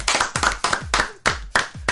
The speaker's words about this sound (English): So, oh, we're supposed to clap, I forgot.